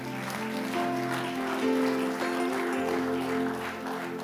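Steady applause from an audience, a dense wash of clapping lasting a few seconds at an even level, with sustained keyboard-like tones humming underneath.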